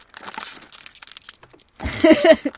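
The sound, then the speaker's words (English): Crinkly rustling of a plastic rice cracker packet being twisted and pulled as someone struggles to open it, with scattered sharp crackles, then a louder burst of crinkling and straining near the end. “I genuinely can't open the rice crackers.”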